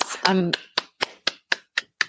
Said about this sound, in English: Applause.